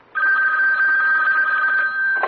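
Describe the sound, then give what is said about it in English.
A telephone bell rings loudly and steadily for about two seconds, a continuous bright jangling, cutting off abruptly at the end. “Don't forget the phone!”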